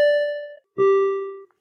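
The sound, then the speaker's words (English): A bell rings two clear tones, a higher note followed by a lower one, each sustaining for about half a second with a bright, metallic shimmer, rung to celebrate a runner's personal record in a first marathon. No voices accompany it. “Louise, this bell is for you.”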